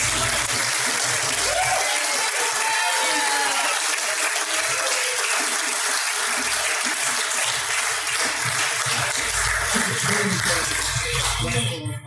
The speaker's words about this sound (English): So, put your hands together for our Grand Champion of Smokin' on the Water 2018, Mo Carson Barbecue.